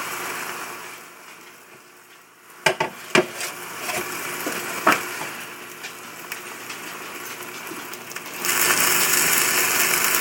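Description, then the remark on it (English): Cheese sizzling as it melts in a quesadilla maker while meat is warmed and onions cook: a steady hissing fry with a few sharp pops and crackles early on, then the sizzle grows louder and fuller toward the end. No talking. “And that's the sound of the cheese being melted still, and the meat being warmed, and the onions being cooked.”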